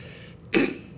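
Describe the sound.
A single short, muffled burst of breath and nasal air, a person imitating their own held-in sneeze, heard alone against a quiet background.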